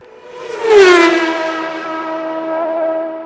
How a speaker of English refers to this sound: All right, Jesus Christ, back on track. Let's hear that car sound.